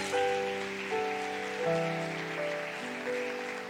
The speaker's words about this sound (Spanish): Oh, dale un aplauso al Señor.